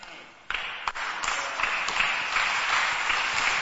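An audience breaks into sustained, dense clapping that swells after a quieter opening, a steady wash of many hands with a few sharper claps standing out.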